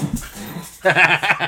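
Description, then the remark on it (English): Dogs wrestling each other whimper and yip in short, strained bursts, with scuffling vocal noises that swell loudly after a brief quieter stretch. “No, they're wrestling each other, and I'm trying to shut them up.”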